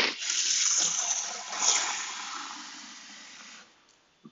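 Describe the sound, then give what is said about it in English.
Water runs steadily from a tap into a pot for boiling eggs, a broad hissing rush that holds for about three and a half seconds before cutting off, followed by a small clink. “I'm gonna be boiling some eggs as well.”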